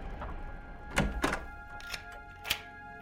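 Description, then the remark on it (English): The door of a home in Mayfair, London, closes with a couple of solid thunks, followed by sharper clicks of a lock being turned, heard clearly with no talking. “I knew there was something wrong the moment I locked the door behind me.”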